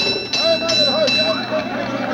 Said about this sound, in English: Listen. Going to a fire in 1826, a team of horses pulling the fire engine of the Norwich Union Boys Firehouse.